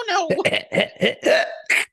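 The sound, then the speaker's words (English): A quick series of about six harsh, raspy coughs, fairly loud, each burst choppy and voiced, coming one after another with only brief gaps between them. “Wait, why am I coughing?”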